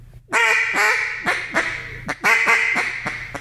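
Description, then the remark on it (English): A duck call blown by a person mimics a fine hen's quacks: a loud run of about eight nasal quacks in two quick bursts, each note clipped short and stopped abruptly, with no talking. “That would be basically a fine hen.”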